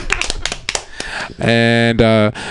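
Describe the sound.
Brief, scattered audience applause with sharp overlapping claps for about a second, then a loud, sustained voice calls out over the fading clapping.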